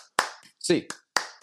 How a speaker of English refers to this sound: Hands up, Bruins fans. 8 clap time. And 1, 2, 3, 4, 5, 6, 7, 8.